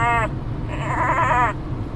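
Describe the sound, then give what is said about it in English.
A person's voice imitates Ray Romano as a goat bleating: two wavering, nasal bleats, a short one followed by a longer quavering one, fairly loud over a low background rumble. “I think my Ray Romano as a goat impression's getting better.”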